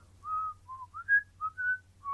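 Someone whistles a short, clear melody, a string of sustained notes stepping up and down in pitch, moderately loud over a faint low hum.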